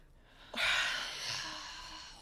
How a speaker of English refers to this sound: Oh my God, you guys are breathing so heavy.